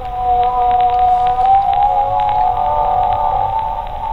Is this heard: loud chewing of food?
no